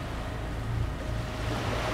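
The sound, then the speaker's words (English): A boat pushes steadily through ocean waves, with a constant low rumble and broad rushing water and wind noise that stays loud and even throughout, with no voices. “You're fair good at this, driving the boat.”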